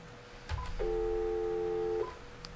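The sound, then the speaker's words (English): A telephone number being dialed to call a person's phone: a soft click, then one steady electronic phone tone lasting just over a second, clear, with no voices. “We are going to call her on her actual phone here.”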